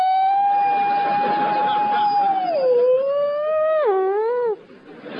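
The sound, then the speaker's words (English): A voice imitates a new fire engine siren: one long, steady high wail that dips, then warbles and drops before cutting off, loud over a noisy background. “And now we have these screamingly camp new sirens. Fire engines scream past the house going, "Woo!"”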